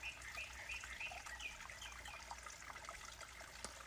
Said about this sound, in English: Hoping you heard that, but there's birdsong. These little canyon bottoms are a magnet to them. Any source of water is. There's countless songbirds.